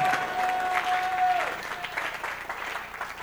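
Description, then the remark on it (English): An audience claps steadily, a dense wash of many hands at a fairly even level, with a brief sustained tone sounding faintly underneath during the first second and a half. “Oh, as you clap, the blessings are falling deep.”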